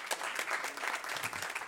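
Steady audience applause in response to the host asking who has listened before, a dense wash of many hands clapping at an even, sustained level for the whole moment, with no voices standing out.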